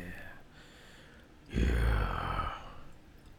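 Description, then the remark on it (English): Beer pours into a glass in a single loud, splashy gush lasting about a second, then quiets to a faint fizz. No one speaks. “Ooh, you splashed on your own glass.”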